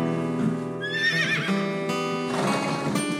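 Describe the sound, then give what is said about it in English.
A horse lets out a loud whinny, its shrill voice wavering and sliding downward, followed by snorting and rumbling breaths with no talking. “A dominant male horse called a stallion usually leads the herd.”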